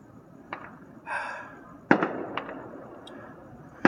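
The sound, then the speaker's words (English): Fireworks bursting at Knott's Berry Farm around 9:15: a handful of sharp booms and pops at irregular intervals, one followed by a brief crackling hiss, with the loudest bangs midway and at the end over a low rumble. “I didn't think Knott's Berry Farm did fireworks.”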